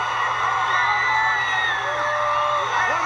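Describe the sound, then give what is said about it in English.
A large wrestling crowd roars in loud, sustained cheering as Sting points at Hulk Hogan, with overlapping whoops and high-pitched yells rising out of a dense, unbroken wall of noise. “The biggest crowd reaction by far.”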